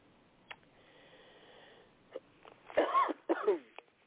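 Two harsh coughs burst out back to back near the end, preceded by a few small clicks and a faint steady hum, with no talking.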